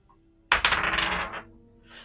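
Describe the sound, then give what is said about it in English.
Dice tumble and clatter across a hard table during a game attack roll, hitting other dice and one landing cocked, in a sharp burst of rattling clicks lasting under a second, fairly loud, then settle into quiet. “That's cocked. Stop hitting other dice.”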